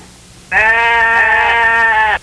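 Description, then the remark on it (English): A single sustained sheep bleat sound effect, loud, lasting about a second and a half with a steady, slightly wavering tone before cutting off abruptly. “You realize you hit the sheep so much you killed the intro music?”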